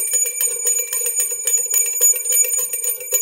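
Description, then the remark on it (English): A school bell rings continuously, its rapid metallic clatter loud, sustained without a break for the whole stretch with no voices. “The school bell's ringing.”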